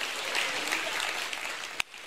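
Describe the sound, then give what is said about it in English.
An audience claps for the Lord during a sermon, a dense, sustained wash of applause, then drops sharply near the end after one sharp final clap. “And if you're glad that God not only provided a lamb for Isaac, but he provided Jesus as a lamb for us, give the Lord a great hand clap to the Lord this morning.”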